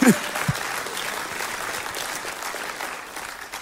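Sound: audience clapping hands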